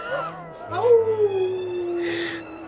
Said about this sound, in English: Those fucking owls are back. I'll shoo them away. Oh my God. They're not owls. It's a whole pack of wolves. I'm in their den.